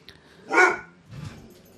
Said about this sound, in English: Stop. That was my asshole dog.